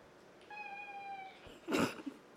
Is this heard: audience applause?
no